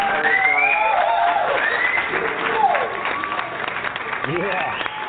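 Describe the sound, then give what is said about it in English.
A crowd applauds and cheers loudly and continuously, with whoops and shouted voices rising over dense clapping throughout. “Give it up. You got the crowd going crazy.”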